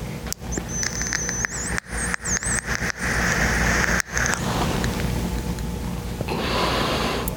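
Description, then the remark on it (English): Crackling pops of burning Butterscotch Silver Haze herb while smoking, irregular and sharp, over a steady breathy draw with a thin high whistle early on, fading into a softer hiss near the end. “I love the crackle that these things make. It lets you know that it's working.”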